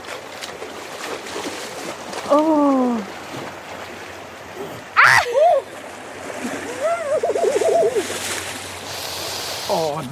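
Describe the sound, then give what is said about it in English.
Steady rushing river water, then a sudden loud splash about halfway through as a naked man jumps into the cold river, surrounded by his sharp gasps and strained exclamations. “There's cars driving past just watching this idiot naked in a river.”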